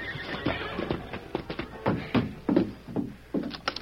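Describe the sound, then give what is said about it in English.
A cowhand reins a horse to a stop in front of the sheriff's office, hooves clopping in an uneven, slowing pattern of sharp hits while the animal snorts and whinnies over them, fairly loud with no talking. “Early the following afternoon, a cowhand from one of the outlying ranches hurriedly drew rein in front of the sheriff's office.”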